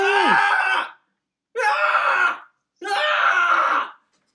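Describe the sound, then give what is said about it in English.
A man lets out three loud, strained yells of pain, each about a second long with short silent gaps between, imitating wrestler Yoshihashi's anguished cries in his match against Finlay. “He yells a lot, and yelling, it's like, okay, so I've seen a lot of student wrestlers, lots of wrestlers coming up, and one of the things that young babyface wrestlers do is they do that a lot.”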